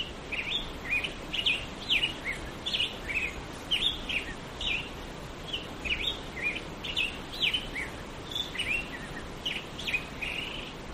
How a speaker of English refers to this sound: The grosbeaks start singing around daybreak, and here's a recording I made of what it sounds like out there. You can hear the gentle white noise of the creek in the background.